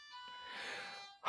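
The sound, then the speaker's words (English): A faint doorbell rings with a steady, buzzy electronic tone holding for about a second, then cuts off into a brief burst of noise. No one speaks. “Man, alright, sorry, my doorbell rang.”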